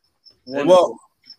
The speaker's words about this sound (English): Well, it sounds like that cricket is back. Thank God for that.